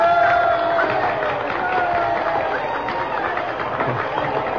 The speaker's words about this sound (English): Oh, Abigail, they're cheering me.